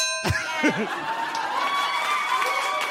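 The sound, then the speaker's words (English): A single bright ding sound effect rings out and slowly fades over a few seconds, with crowd murmur and brief vocal sounds underneath. “please only address me in the form of dings and buzzes.”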